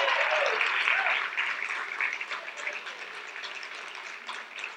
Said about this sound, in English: Thank you. But don't be clapping for me, clap for you, because you're the real heroes behind all of that.